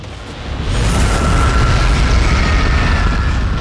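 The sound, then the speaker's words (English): Light bulbs burst in a loud, continuous explosive roar, a dense rumbling crackle that swells in the first half-second and holds steady, with no voices. “Light bulbs explode like fireworks.”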